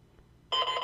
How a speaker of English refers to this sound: Garfield alarm clock. Ooh, perfect. Oh, here we go, dude.